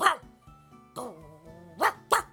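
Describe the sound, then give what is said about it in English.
A person mimics the barking of a Pokemon with several sharp, voiced woofs in an uneven rhythm, fairly loud, with a short gargly growl between them. “And he starts barking and the other Pokemon kind of follow suit.”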